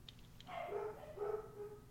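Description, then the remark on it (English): Two drawn-out, fairly loud barks from dogs chasing each other follow about half a second apart, with no talking and only a faint background hum. “Bark, bark!”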